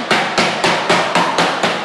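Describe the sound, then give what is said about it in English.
A boneless, skinless chicken breast being pounded between two pieces of plastic wrap so it is even all over: about seven loud, dull thuds in a quick steady rhythm, each with a brief crinkly slap, and no talking. “That's not me hammering a nail, it's actually me pounding the chicken.”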